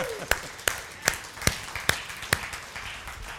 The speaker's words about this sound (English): Yeah, we can give a clap.